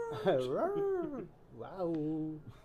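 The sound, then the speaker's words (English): A person imitates a werewolf howl, done as Christopher Walken as a werewolf, giving two drawn-out, wavering vocal howls with pitch rising and falling, separated by a brief pause. “I'm a wolf.”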